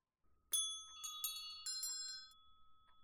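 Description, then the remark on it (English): A small house bell hanging in a room, connected to a chamber on the highest story of the building, rings softly as it swings, several light strikes in uneven succession, bright tones lingering and overlapping before fading away, with no voices. “It was with great astonishment, and with a strange, inexplicable dread, that as he looked, he saw this bell begin to swing.”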